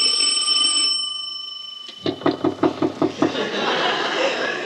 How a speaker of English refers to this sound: Should I ring or should I just knock intimately? I'll do both.